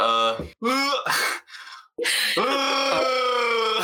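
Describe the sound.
A person imitates Chewbacca's Wookiee scream: a few short harsh growling bursts followed by a long, loud, sustained howl with a strained, buzzy, wavering pitch.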